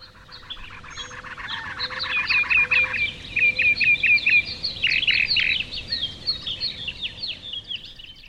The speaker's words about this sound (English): When we understand the meanings of a sound made by a bird, nerves in two different brains touch and signal.